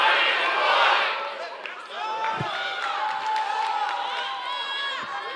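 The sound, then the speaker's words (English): An audience shouts back loudly, many overlapping voices yelling and whooping together in a sustained roar that carries through the whole moment, with scattered cries rising above the crowd. “Somebody scream order in the court.”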